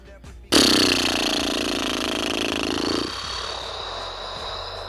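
A small SUV engine putters along in a steady, raspy buzzing drone that starts abruptly, holds loud for a few seconds, then loses some of its low rumble and keeps going.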